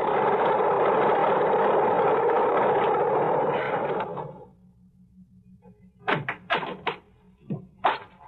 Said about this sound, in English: I am listening to the most beautiful sound in the world. I got to the airport just as the plane taxied up the strip. Single engine job. Just right.